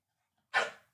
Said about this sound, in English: Stop. He agrees. He's barking at the box of Magic Spoon. He's barking at the Magic Spoon.